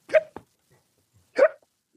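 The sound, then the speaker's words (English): A person imitates a drunk man's hiccups just as he is about to speak on the phone: two sharp, throaty hiccups about a second apart, each a quick, loud gulping yelp, with a faint click after the first and quiet between them. “And just before he says hello, he hiccups and he slams the phone down.”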